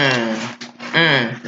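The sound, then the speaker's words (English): Small dogs bark and yelp in two drawn-out, high-pitched bursts with a short gap between them, fairly loud and tonal. “I heard two little dogs.”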